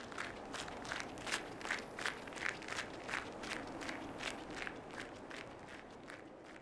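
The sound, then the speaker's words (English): Running footsteps pound along in a quick, steady rhythm, roughly three per second, each a sharp scuffing thud over a constant hissing background, with no voices. “Marion stopped walking and started running.”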